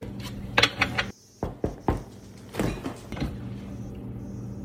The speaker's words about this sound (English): Why'd you knock on the fridge?